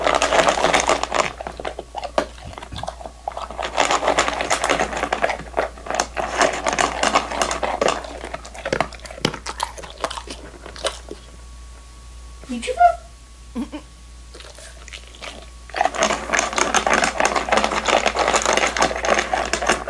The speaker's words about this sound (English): First, I give you the great Moose the dog eating his dinner. Here we go, Moose.